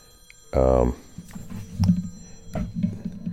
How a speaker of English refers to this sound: My phone rang, so I had to shut it off.